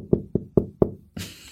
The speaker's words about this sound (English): help me find gratefulness in this knocking on my door